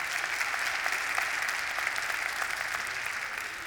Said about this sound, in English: That is worthy of applause.